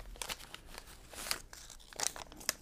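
Crisp crinkling of a small Yogi Tea Sweet Ginger Citrus Turmeric Vitality tea packet being pulled out of a breast pocket, with several sharp rustling bursts spread irregularly over a couple of seconds and no voices.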